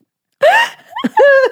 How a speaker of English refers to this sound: Guess he's got the hiccups again.